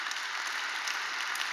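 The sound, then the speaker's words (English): A church audience applauds steadily after hearing that phase one of Vision 22 is fully funded, many hands clapping in a dense, even wash of sound with no voices, at moderate volume throughout. “And so, you can clap for that.”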